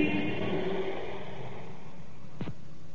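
Emergency car engines rumble and rev as the vehicles pull out of a station in London in response to an air raid warning, a steady mid-pitched drone with a brief rising whine near the end. No voices are heard.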